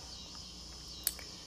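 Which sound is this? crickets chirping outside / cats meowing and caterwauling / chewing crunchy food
crickets chirping outside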